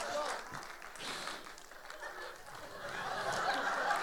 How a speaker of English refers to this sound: Give Pastor Charles a round of applause. Yeah, my man.